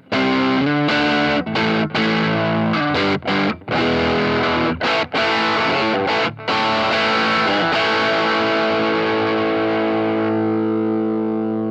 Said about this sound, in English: And even that, I don't have a lot of gain on it. I mean, my drive is at 10, 11 o'clock on this that pedal, so there's a lot more to go, but that's because I start cascading.